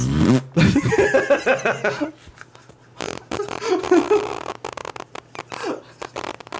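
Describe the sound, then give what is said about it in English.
A loud fart sputters out in a raspy, drawn-out burst, falls quiet briefly, then returns as several shorter, buzzing blasts before trailing off. “But I said it while farting.”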